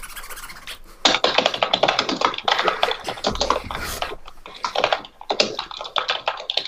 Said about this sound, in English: stop slamming your head off your keyboard, please.